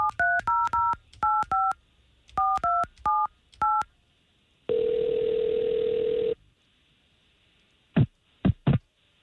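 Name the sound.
telephone number being dialed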